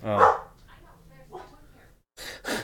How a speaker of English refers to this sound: Oh. Poor dog. So sorry if you can hear the dog. He's an idiot. There's a UPS guy or something.